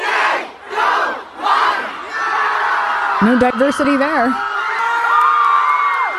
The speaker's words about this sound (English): Here's some footage here of many of the Indians cheering as this was happening here.